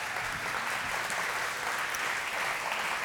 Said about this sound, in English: Welcome them up with a hand clap.